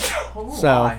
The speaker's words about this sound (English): Sorry about that sneeze. Bless you.